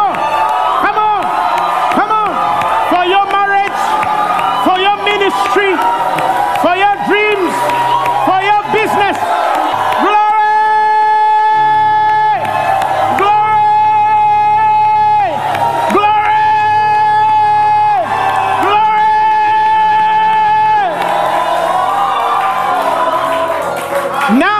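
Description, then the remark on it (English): An audience screams and cheers loudly and continuously for 15 seconds, praising what God has done, voices rising and swelling in long sustained shouts, a dense wall of crowd noise with no pauses. “Come on! Come on! Come on! Louder! In your house, in your car, scream!”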